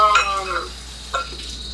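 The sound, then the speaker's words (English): Sliced chicken and onions sizzle in oil in a pan over high heat with a steady hiss, broken by a couple of brief scraping stirs and clinks; no one speaks. “Since I tend to slice the chicken, not thin, but just not like these chunky squares, then it should be done at the same time as the onions kind of saute in there, you know?”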